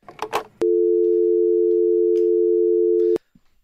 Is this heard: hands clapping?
no